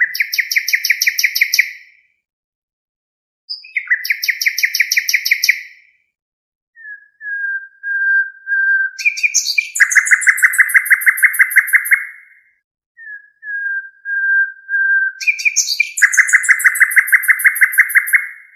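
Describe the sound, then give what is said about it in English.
A nightingale sings alone, alternating rapid bursts of repeated sharp notes with slow, pure whistled tones that swell into loud, rich trills, separated by brief silent pauses. “So before we get to hearing the piano play the nightingale, let's actually listen to a nightingale.”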